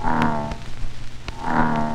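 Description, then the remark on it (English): Two deep, throaty bullfrog croaks, each a resonant drawn-out drone, about a second apart, fairly loud, with no one talking. “All of you boys and girls have no doubt heard the deep throaty croak of a great big old bullfrog.”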